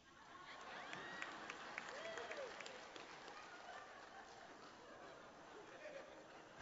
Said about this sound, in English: I'm not sure why y'all applauded. Kind of scared.